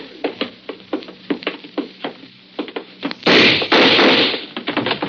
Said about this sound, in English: Okay, Bragg, I got the door open.